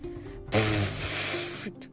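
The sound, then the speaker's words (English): A loud, steady hiss bursts in after a brief low murmur and streams on for over a second, like a balloon with a leak: a tiny spout of water shooting out of a pile of dung, then cuts off. “Like a balloon with a leak.”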